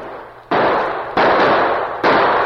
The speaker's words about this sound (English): As the Lone Ranger Tonto and Clarabelle Hornblow reined up at the place where Jed Keller had been killed, they were suddenly startled by gunshots from the gully behind them.